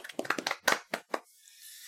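A brief round of applause: a quick, uneven run of crisp hand claps lasting about a second before dying away into faint hiss, with no voices over it.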